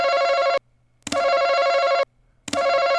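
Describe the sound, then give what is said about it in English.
Three loud, harsh electronic beeps from a ticket scanner rejecting three tickets scanned by a gate attendant: a steady buzzy mid-pitched error tone, each beep about half a second to a second long, separated by short silences, with no talking. “Oh, that was three scans for good. All three failed.”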